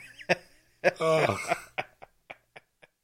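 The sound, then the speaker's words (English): A sharp intake, then a loud, forceful sneeze with a voiced tail, followed by a string of short breathy bursts that grow fainter and trail off. “Bless you.”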